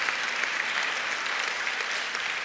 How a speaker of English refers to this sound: Can we give her a round of applause for that? That's great.